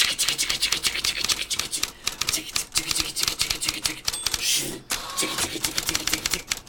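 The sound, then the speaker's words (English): Rapid, continuous typing on a computer keyboard while looking up the show The Silver Guardian, a fairly loud clatter of keystrokes with a brief pause near the end, and no one speaking. “Maybe just edit in a typewriter noise.”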